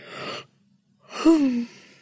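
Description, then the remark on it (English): A person yawns: a deep, breathy inhale, a brief pause, then a drawn-out exhale with a low, falling voiced groan. No speech. “All this talk of yawning is making me have to...”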